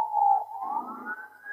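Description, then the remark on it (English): A police car siren wails past, holding a steady tone before gliding upward in pitch, with a low rumble of traffic underneath and no one talking. “And it's ironic, isn't it, that there's a police car going past you right now.”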